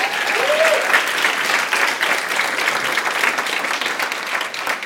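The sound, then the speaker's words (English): A crowd at Epic claps steadily and densely for several seconds for the worship team, a full, continuous wash of applause with a faint whoop near the start, filling the room at a consistent loudness. “Would you give our worship team one more round of applause?”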